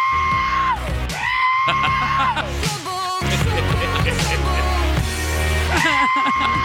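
Loud, drawn-out goat screams repeat with sliding pitch over a steady musical backing in a quick remix of pop hits, several bleating yells in a row that stay prominent.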